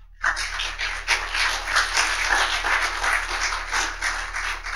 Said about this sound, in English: Let's give them another round of applause, all of them.